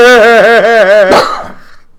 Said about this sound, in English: Wow, that cough registered. That's two.